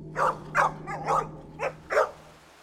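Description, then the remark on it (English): A small mixed-breed dog about the size of a Cocker Spaniel, spinning around in the sand on a beach, lets out a quick series of about six sharp, high-pitched barks mixed with whiny yelps, fairly loud, over a faint steady low hum. “Not a very small dog, about the size of a Cocker Spaniel.”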